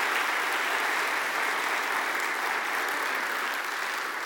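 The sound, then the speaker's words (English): An audience claps steadily to thank guests for sharing their story, a dense, even wash of many hands applauding at a fairly strong level throughout, with no voices rising above it. “Would you thank these guys for sharing a little bit of their story with us?”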